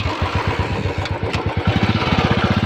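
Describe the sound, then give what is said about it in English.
A Royal Enfield Bullet motorcycle engine, from the recently relaunched model of the Indian-owned brand with British origins, thumps along with a steady, rapid low-pitched pulse, loud, its beat quickening slightly toward the end. No one speaks. “That sound you're hearing belongs to the legendary bike, the Bullet.”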